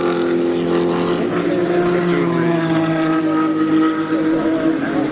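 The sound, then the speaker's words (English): A car engine runs loud and steady for several seconds, a rumbling drone with strong low harmonics and a slight rise and fall in pitch as the vehicle goes by. “The different sounds they make, the different vehicles.”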